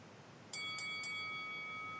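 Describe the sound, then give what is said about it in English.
A boxing ring bell is struck three times in quick succession, then its bright metallic tone rings on and slowly fades, heard alone against a quiet background. “Yo, ring me my bell.”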